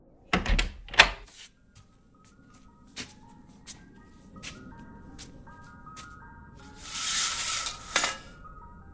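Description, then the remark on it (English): An ice cream truck's tinkling jingle plays a thin, stepping melody at 11:30 at night, opening with a couple of heavy thumps and later joined by a brief rushing hiss. “ice cream truck? It's 11:30 at night.”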